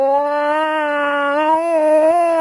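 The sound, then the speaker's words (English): A voice imitates a screaming cat with one long, loud, unbroken wail, holding a steady mid pitch for over two seconds before bending slightly upward near the end. “I was woken by the screaming of a cat.”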